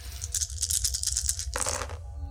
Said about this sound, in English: Wait, six dice? Six dice. Why did I roll seven?